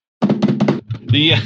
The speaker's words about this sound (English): So, drum roll.